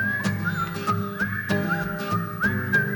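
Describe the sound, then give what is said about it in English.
Several people whistle a wavering, sliding tune together in a sing-along, the pitch swooping up and down in short repeated phrases over a steady rhythmic backing, fairly loud. “I can whistle a tune. Let's whistle, come on.”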